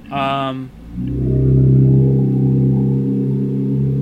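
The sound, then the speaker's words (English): A car horn outside a house blares loudly: a short, bright blast, then a long, deep, sustained honk that drones steadily like a foghorn, with no talking. “What was that? It was like a foghorn. Sorry, that was a car outside my house.”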